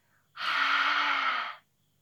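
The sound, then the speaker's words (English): A single loud, forceful exhale through the mouth during a dragon breathing mindfulness exercise, breathy and roaring with a faint voiced rasp, lasting just over a second. There is no talking and only a faint intake before it. “And when we do this, we breathe in deep through our nose, then breathe out our mouth sounding like a dragon.”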